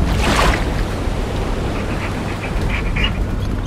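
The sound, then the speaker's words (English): A loud, continuous roar of rough ocean waves in a storm in a bay, with a deep rumble underneath and a surging wash near the start. No voices. “Maybe he won't be able to find us in the storm.”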